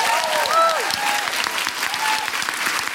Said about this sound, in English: A big round of applause for everyone at the BFI.